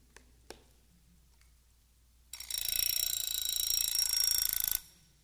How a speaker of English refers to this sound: I had this alarm clock. I brought it this morning. You ever seen one of those? That's ancient, huh? I love this old alarm clock. I never use it anymore.